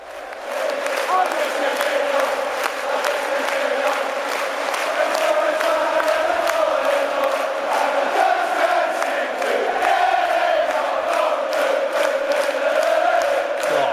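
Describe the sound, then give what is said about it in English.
A large crowd of Glasgow Celtic football fans sings a chant in unison, a loud, steady wall of voices holding a sustained melodic line for the whole stretch without letting up. “Why can't we sing songs like that? Get the crowd in like that.”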